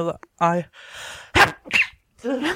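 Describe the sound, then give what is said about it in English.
A quick sharp sneeze bursts out after a drawn-in breath, followed by a second snorting burst, with brief voiced sounds before and after. “What was that? It was that a sneeze?”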